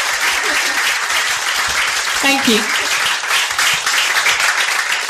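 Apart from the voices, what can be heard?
audience applause and cheering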